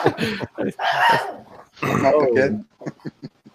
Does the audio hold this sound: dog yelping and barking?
yes